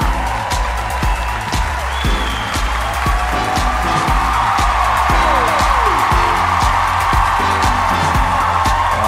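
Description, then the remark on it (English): A large audience claps steadily for several seconds, a dense wash of applause with some cheering, while a thumping music beat plays underneath, welcoming comedian Matt Ingebrigtsen to the stage. “You guys, give it up for the hilarious Matt Ingebrigtsen!”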